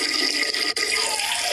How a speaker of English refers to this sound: You pee? Man, that's a, like a steady, strong stream, too. The whole time, yeah.